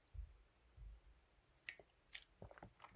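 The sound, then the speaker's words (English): A couple of soft, low gulps of someone drinking water, followed by small wet mouth clicks and a sharper knock at the end. No one speaks. “Let me just drink some water 1 second.”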